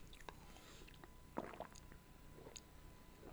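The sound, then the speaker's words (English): Wet gulping and swallowing as someone chugs water, not alcohol, in several quick pulls, with small mouth clicks and liquid sloshing between swallows; no talking. “That was a chug of water, by the way.”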